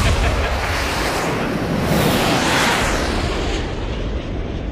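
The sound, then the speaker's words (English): A jet engine sound effect roars steadily for several seconds, a dense, loud rushing noise that swells briefly in the middle before settling back. No voices are heard. “I think I got some jet sound effects I can layer in for that.”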